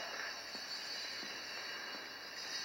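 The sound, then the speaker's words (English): A subway train rumbles steadily through the 8th Avenue A train station, a broad hissing roar with a high metallic whine on top and a few faint rhythmic clacks, with no one talking. “A sex worker sees him and motions two black stick-up guys to follow him into the 8th Avenue A train station.”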